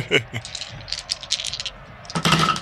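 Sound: dice rattling and rolling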